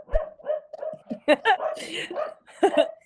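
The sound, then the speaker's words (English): A puppy named Lily yaps and barks excitedly in a rapid string of sharp, high-pitched yelps, mixed with a person talking over it. “Yeah, that's the puppy going nuts in the background.”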